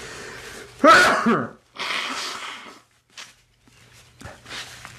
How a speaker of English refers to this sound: You know, I'm sneezing here and I'm taking this Chinese medicine, right?